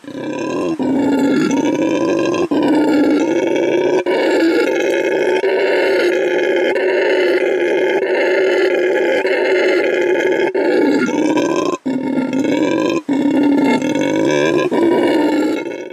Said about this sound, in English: Nope, this is something very different. This is what a howler monkey sounds like.